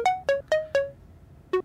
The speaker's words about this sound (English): It's ringing. Why is she ringing? Who phones someone after, like, two texts?